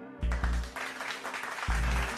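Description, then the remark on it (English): Hand claps from a crowd, a dense, steady patter of many hands clapping at once for about two seconds, with a few dull low thumps underneath and no talking. “give y'all some hand claps right there.”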